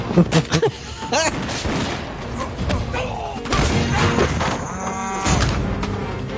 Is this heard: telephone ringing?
no